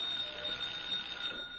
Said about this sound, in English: That's what I was waiting for. The doorbell.